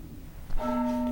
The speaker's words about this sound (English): Oh, nice bell.